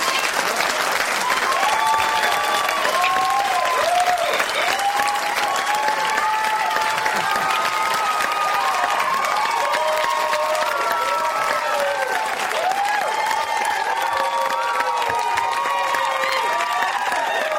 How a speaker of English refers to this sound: The fake overenthusiastic applause is disturbing to Ryan. It's obvious to him that Jones has coached these people how to act.